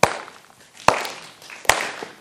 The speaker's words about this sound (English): Those of you that are in music, you know how important rhythm is, right? Think about it. Let's just try this. Everybody clap with me.